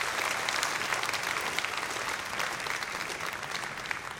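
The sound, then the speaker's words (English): A crowd applauds people who get Christian counseling, clapping steadily for about four seconds, a dense, even wash of many hands at a fairly loud, constant level with no voices standing out. “So we give it up and we applaud you if you get good Christian counseling.”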